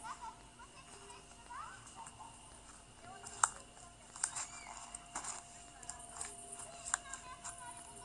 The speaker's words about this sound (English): Oh, there's the horse. I wasn't sure, I heard a noise. And I wasn't sure what it is, but it's the horse. He took some grass, so can hear the sound.